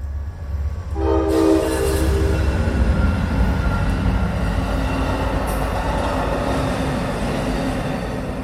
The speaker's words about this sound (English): And then not long after that, as Amtrak, as the trains were rolling through, and I was sitting there watching, looking across at that wall that had the history of graffiti on it